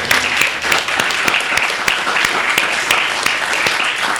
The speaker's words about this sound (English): I'd like to give a round of applause to all our student readers